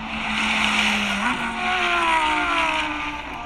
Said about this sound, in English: The brand new Lamborghini Huracan STO is a race car for the track. So what does it sound like going down the straightaway?